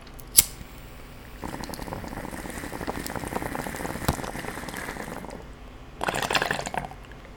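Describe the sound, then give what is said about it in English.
A sharp lighter-like click, then steady gurgling bubbles from a water pipe as someone smokes a bowl, lasting several seconds, a short pause, and another brief burst of bubbling. No talking. “And just kind of popped in my head after I take this bowl here.”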